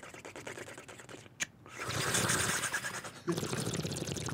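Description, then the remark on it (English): Steady bubbling and gurgling of water, like air blown through liquid to mimic a bong, running for a few seconds after a brief pause and then continuing in a rougher burst. “you can do a bong noise, right?”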